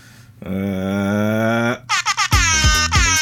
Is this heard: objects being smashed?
no